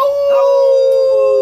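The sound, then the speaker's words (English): A person howls like a wolf or coyote, one long, loud tone that holds steady and slowly sinks in pitch, with no talking alongside it. “Wolf core or coyote core.”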